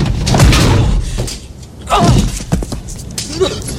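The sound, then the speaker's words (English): A person slams into a door with a dull, booming impact, followed moments later by another muffled bump, with vocal sounds and rustling mixed in. “It looked real painful when you slammed into it.”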